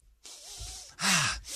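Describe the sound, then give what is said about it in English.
A deep breath drawn in through the nose, airy: a long steady hiss of air that swells into a louder, rougher rush before briefly easing off. No one speaks. “Ah, cleared sinuses. You're definitely not fine, and but you're breathing well.”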